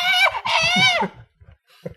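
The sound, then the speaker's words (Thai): A person screams on request, letting out two shrill, high-pitched screams, a brief one followed by a longer sustained one, loud, then it falls quiet apart from a few faint low sounds. “เชิญกรี๊ดส่งเสียงได้เลยครับ”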